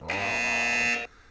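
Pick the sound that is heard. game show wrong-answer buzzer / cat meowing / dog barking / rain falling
game show wrong-answer buzzer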